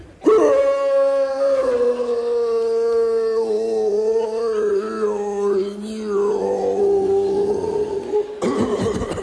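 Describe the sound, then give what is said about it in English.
A voice imitates a growling stomach with one long, drawn-out groan that holds a steady mid pitch and wavers slightly for about eight seconds. It ends in a short, breathy, rough burst. “Push on your stomach and hope the noise will go back near your kidneys.”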